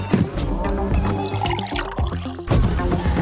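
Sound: juice being poured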